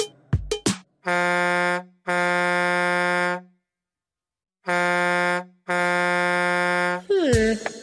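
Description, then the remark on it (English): A loud truck air horn blasts in four long, steady honks, two in quick succession, a pause, then two more, with brief clattering noises at the start and end. “Oh, a truck.”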